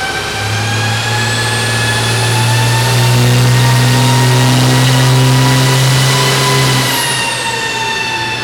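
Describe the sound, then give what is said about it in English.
A diesel truck engine revs hard on a dyno at Diesel Power Challenge 2019, on its second run after being fired back up. Its deep drone climbs steadily in pitch and loudness for several seconds before easing off, with a whining high-pitched tone sweeping alongside it. “trying to figure out what exactly it's going to take to have this thing make some power here at Diesel Power Challenge 2019”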